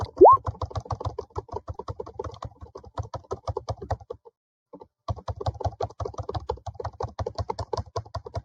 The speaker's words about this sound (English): Is that the noise I'm making? No, I'm typing something real quick.